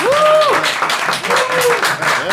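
A crowd breaks into loud, sustained applause as a music group is introduced on stage, a dense wash of clapping with whoops and cheering voices rising and falling over it.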